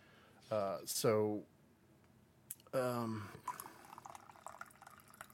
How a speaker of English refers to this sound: Let's see if I have managed to resolve my coffee pouring sounds from the previous episodes.